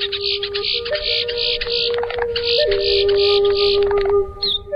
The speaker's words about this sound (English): Quiscalis major, the boat-tailed grackle, found in a wide variety of habitats, including airports.